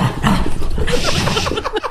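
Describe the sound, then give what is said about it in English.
A female dog vocalizes in a fairly loud, steady burst of whiny, yipping sounds that rise and fall over a couple of seconds, with no clear talking over it. “That's not really her, is it? It is? That's definitely her.”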